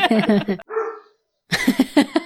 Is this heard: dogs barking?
yes